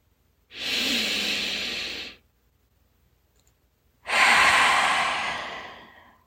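A slow, deep breath drawn in through the nose, a brief pause, then a longer, airy exhale out through the mouth that fades away; clear, with no talking.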